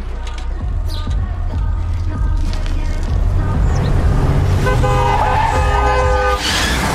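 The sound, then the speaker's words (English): A car horn honks insistently over loud engine noise and road rumble as the car nearly runs over a girl, with a brief high screech near the end as the vehicle passes by. “She stops by her uncle's house, and while she's going to pick up the paper for the uncle, some bitches in a car almost run her over.”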